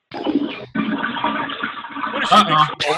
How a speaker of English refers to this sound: She's in the bathroom. She flushed the toilet.